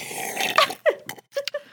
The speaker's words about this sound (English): Can I just slurp my water really loud?